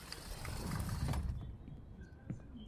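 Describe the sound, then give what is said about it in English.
A door is pushed shut with a muffled thud and rattling mechanism, then a small metallic click as the lock turns, fairly quiet, with faint background hum afterward. “I closed the door and locked it.”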